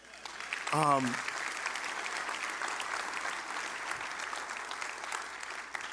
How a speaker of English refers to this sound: but one thing before I get started, could you give a round of applause to our worship team?